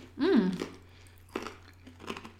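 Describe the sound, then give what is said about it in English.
A crunchy oat snack bar made with oats, pepitas (pumpkin seeds), flaxseed and spices being chewed, with a short voiced murmur at the start followed by two or three crisp, crackly crunch bursts spaced apart, fairly soft overall. “Oh, it is crunchy.”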